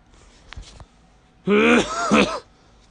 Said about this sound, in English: Had a cough again.